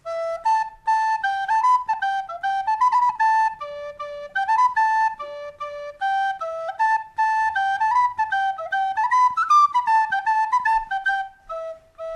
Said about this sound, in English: all he has to do is have a party, because when he plays his whistle, you know that everybody just has to dance.